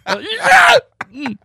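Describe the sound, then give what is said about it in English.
A single sneeze: a rising voiced intake breaks into a loud, harsh burst of breathy noise, followed after a short pause by a brief murmuring voice. “What was that? Oh, I sneezed.”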